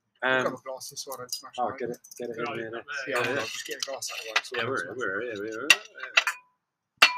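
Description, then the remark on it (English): People talk steadily, then near the end a few sharp, bright clinks ring out as a drinking glass knocks against a table, brief, with short gaps between them. “Just get a glass out of the way.”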